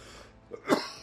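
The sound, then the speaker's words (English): A single harsh cough bursts out after a moment of quiet breathing, with a strained, choking catch in the throat as it trails off. “I'm over here coughing and choking.”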